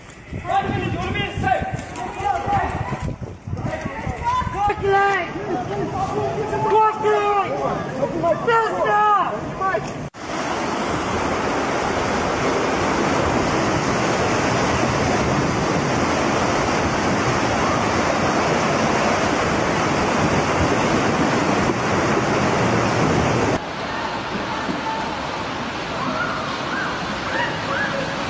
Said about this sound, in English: The deluge came barreling down the valley with a thunderous roar, sweeping away everything in its path.